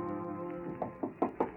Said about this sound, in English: Her manager knocks at the door.